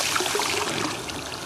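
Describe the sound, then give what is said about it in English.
Water trickles and dribbles steadily out of a pole for a moment, a continuous splashy flow with small bubbling accents, moderately loud and without any voices. “Poles are perfect for holding water, man.”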